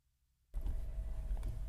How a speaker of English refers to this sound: I'm back in the car going to Los Angeles International Airport, being driven by a friend